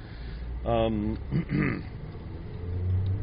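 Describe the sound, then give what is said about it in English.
In the morning on a busy rural neighborhood road, a farm truck or tractor rumbles past, its low engine drone steady throughout, with a couple of short voiced sounds breaking in over the noise. “Out here, but farm trucks and tractors.”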